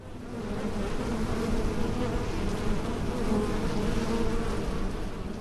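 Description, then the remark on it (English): A swarm sound effect from a show's soundscape: a dense swarm of insects buzzes steadily, a thick droning hum with fluctuating pitch layers that stays loud and continuous throughout, with no voices. “That was the swarm sound.”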